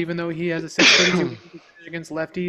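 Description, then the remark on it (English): A single sharp, loud sneeze bursts out, cutting into a man's speech, which carries on just before and after it. “Bless you, by the way.”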